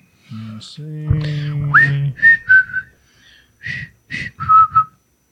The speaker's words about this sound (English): I've been whistling that. It's so catchy.